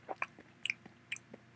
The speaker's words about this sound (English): Plucking a medium-sized mushroom from the dirt, Jane tossed it in her mouth and started to chew.